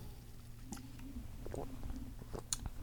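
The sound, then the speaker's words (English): Someone takes a quiet drink: a few soft, wet mouth clicks and swallowing sounds spread over a low steady hum, with no talking. “Let me get a sip, bitch.”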